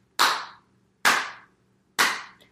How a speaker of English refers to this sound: Slow claps for Lala.